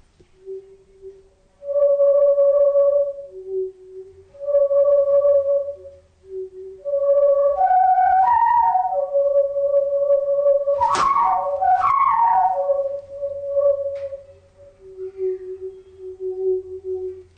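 A simple tune played on a pink plastic tube, with a string of hooting, breathy held notes stepping up and down in pitch, some warbling higher, continuing for about seventeen seconds with no talking.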